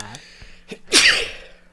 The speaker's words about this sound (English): Nothing like starting it off. Little sneeze action. I see both of us are struggling with a little bit of cold. Is yours allergies? Allergies, bad.